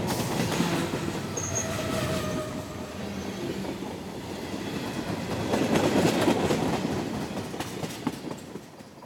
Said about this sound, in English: So I just hold on and wait. I hang from the side of the train and wait for the severed state to disappear.